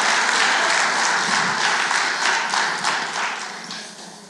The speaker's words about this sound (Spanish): Si usted lo quiere, dile a dar un aplauso fuerte al Señor y dice: alaba, aleluya.